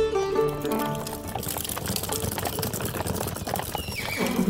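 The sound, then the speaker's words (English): Steady clip-clopping hooves of a horse-drawn wagon, a quick, even rhythm with rattling wheels, loud. Soft music plays at the start before the hoofbeats take over. “Well, before they walked, they used horses or other animals that they could ride. That's a lot of walking. Then let's take the wagon.”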